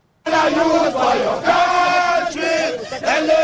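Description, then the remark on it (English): A large crowd of protesters in Ghana, on the final day of a three-day demonstration, sings Arise Ghana Youth together loudly as they block a car carrying Ghana Prison Service personnel. Many voices blend into a sustained, chant-like melody that rises and falls in steady phrases without pause. “The protesters singing Arise Ghana Youth as they block a car filled with personnel of the Ghana Prison Service.”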